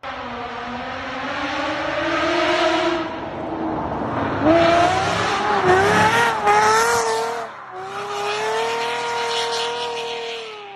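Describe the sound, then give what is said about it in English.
A smooth, high-pitched Mercedes V12 engine with equal-length headers revs hard, its tone climbing and falling in several loud bursts, briefly cutting out before winding up again. “So we're going to have to do an insert here, but listen to what these engines could sound like, or could have.”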